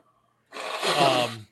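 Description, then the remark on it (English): A single sneeze: a breathy, noisy burst lasting about a second that swells and then cuts off, heard on its own without any talking. “Bless you.”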